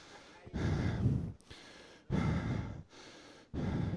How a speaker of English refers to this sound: I feel like I preached this morning. I'm breathing hard.